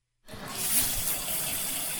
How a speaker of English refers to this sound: The bathroom is one of the few places where you can get a little privacy, right? Standing under that spray of water behind the shower curtain, even more.